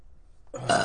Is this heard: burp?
yes